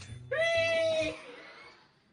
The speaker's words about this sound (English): Victory screech!